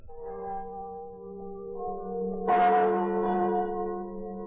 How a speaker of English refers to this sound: These are the chimes of Notre Dame, Our Lady of Paris, tolling out across the River Seine, ringing in one of the merriest Christmases that France has ever known.